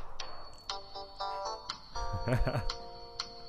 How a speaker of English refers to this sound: Yeah, it's this brand new ringtone. It's a really good one.